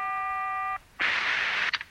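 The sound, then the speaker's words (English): A steady electronic telephone tone sounds for under a second as someone places a call, then after a brief pause a loud hiss of static rushes in and ends with a couple of quick crackles. No one speaks. “I'll call them.”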